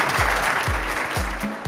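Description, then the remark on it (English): Steady applause from an audience, a dense wash of clapping that holds at an even loudness for the whole stretch, with low thumping pulses repeating underneath roughly every half second. “Let's give them give them a round of applause.”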